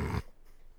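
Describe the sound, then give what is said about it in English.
A voice gives a short, gruff growl imitating a dog, loud, lasting only a fraction of a second before cutting off into near silence. “You gonna do the invisible dog thing?”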